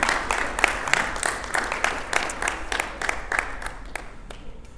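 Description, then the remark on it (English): A church audience applauds the worship team in a steady, dense round of clapping, with sharp individual claps standing out, holding fairly even before thinning slightly toward the end. “Real quick, before we dive into the message, let's give the worship team a round of applause real quick.”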